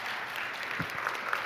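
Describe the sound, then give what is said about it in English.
A crowd applauds steadily to welcome a woman invited to come up, a dense wash of many hands clapping at even loudness throughout, with no talking over it. “Let's give her a round of applause and just welcome her.”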